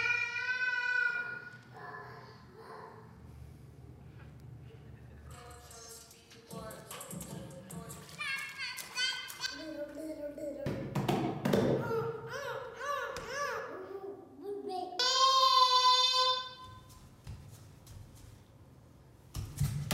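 A small girl squeals and babbles in high, sing-song bursts while banging and tapping things around, producing scattered sharp knocks between the loud vocal outbursts.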